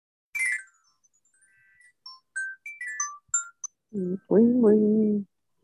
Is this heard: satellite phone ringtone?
yes